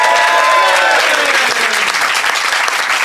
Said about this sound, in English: So a big round of applause for our expert,